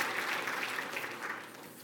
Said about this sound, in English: So let's give a round of applause to them for doing that for us. We're very grateful.